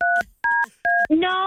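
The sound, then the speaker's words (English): Three touch-tone telephone keypad button presses during a call with a customer service representative, each a short, steady two-pitch beep in an even rhythm, followed by a voice that starts speaking over the end. “Yeah, I'm not sure why you're still pushing buttons.”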